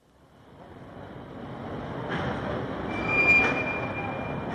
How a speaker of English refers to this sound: Oh, this is our train.